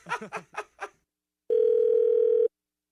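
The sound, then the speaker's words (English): A short burst of voiced, laugh-like sounds gives way to a steady, loud electronic tone that holds unbroken for about a second: a phone line's dial tone after the other caller hangs up. “He hung up.”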